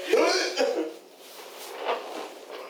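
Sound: hiccups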